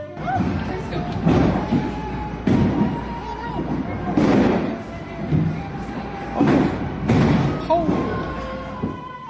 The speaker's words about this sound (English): came down literally the size of baseballs. Softballs. Listen to that. That's incredible. And they show the video out the window of these giant hailstones the size of baseballs landing on the roof.